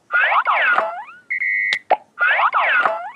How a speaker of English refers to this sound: So you drained your college fund to buy a meme of a lizard who farts. And dribbles, see?